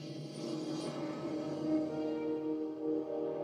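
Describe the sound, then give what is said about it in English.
The World of Warcraft startup sound: sustained, layered musical tones swelling steadily for a few seconds at an even, moderate volume, with no one speaking. “That was the fucking startup sound of for World of Warcraft.”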